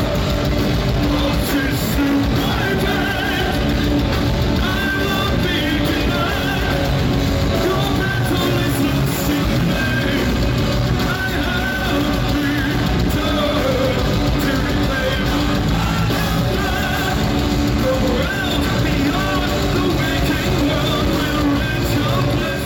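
A live band plays a song in a venue, the sound dense, loud and unbroken, with heavy low-end rumble, distorted instruments and a belting vocal running through the whole stretch.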